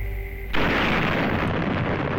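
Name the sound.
nuclear bomb explosion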